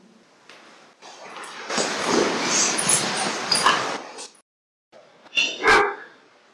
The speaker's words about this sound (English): Whose dog was it? The prison dog? I heard a dog bark in here once.